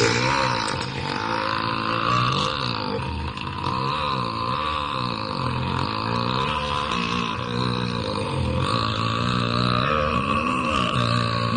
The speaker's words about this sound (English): And we were wondering, is it possible that that's real? Is there anybody who can burp like that? I'm sure Will Ferrell didn't do it. Is it some sort of movie magic?